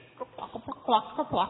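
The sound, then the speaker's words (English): A person imitates a chicken with a quick, uneven run of about eight short clucks, fairly loud, with no other sounds around it. “More like a chicken.”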